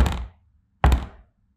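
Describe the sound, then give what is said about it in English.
Two heavy, booming pounds on a door, spaced almost a second apart, each a deep thud with a short dull decay, coming from the other side of the door. Loud, with nothing else around them. “And then you hear a noise come from the other side of the door, 2 thudding pounds on the door.”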